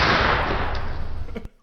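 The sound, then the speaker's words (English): A loud, close gunshot blast with a heavy booming rumble that roars for over a second, then cuts off abruptly with a final sharp crack. “Everything's gonna end with a gunshot.”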